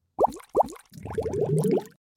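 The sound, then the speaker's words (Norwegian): A jingle: two distinct watery plops ring out, followed by a rapid burst of bubbling, gurgling pops, like liquid bubbling up, loud with no talking. “Yeah, boble, boble, boble.”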